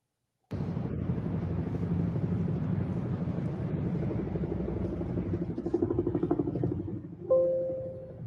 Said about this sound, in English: For those listening, these are the police helicopters flying overhead of St. Patrick's Cathedral.